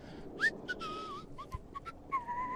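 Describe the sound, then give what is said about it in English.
Someone whistles a short, wavering melody, the clear pitched notes sliding and hopping over a low hiss of background noise, with brief breathy gaps between phrases. “Whistling doesn't make us good.”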